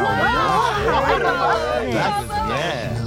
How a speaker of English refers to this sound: The crowd is loving it.